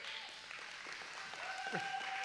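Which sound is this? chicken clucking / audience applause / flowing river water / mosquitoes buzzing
audience applause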